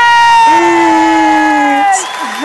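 A crowd-cheering sound effect played as a thank-you to a guest on the Tech Cat Show: a loud burst of cheering lasts about two seconds, dominated by a sustained, bright, high-pitched vocal tone that dips at the end before fading out.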